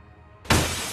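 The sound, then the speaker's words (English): Glass suddenly shatters with a loud, bright crash after a moment of near silence, the broken shards ringing and scattering for the rest of the second. “The sound of shattering glass woke Celeste instantly.”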